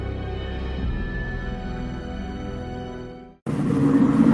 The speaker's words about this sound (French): Il y a eu un gros bruit de voiture, là. Effectivement. C'est rien, c'est une calèche très rapide dans la rue.